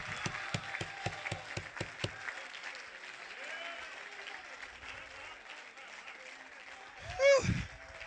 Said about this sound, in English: I don't know about you, but I'm going to clap my hands until my hands realize my hands are God's instruments. I'm going to stomp my feet. I need God to get his attention.